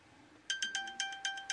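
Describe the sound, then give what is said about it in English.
A phone's find-my-phone alert, set off by tapping an icon, rings out in rapid, evenly spaced high-pitched chirps with a sustained tone beneath, starting abruptly and repeating steadily, clear with no talking. “You hear that sound? Okay, that is the find my phone thing.”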